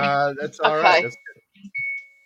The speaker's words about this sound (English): Bell ring.